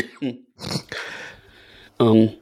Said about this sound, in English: I'm going to cough now.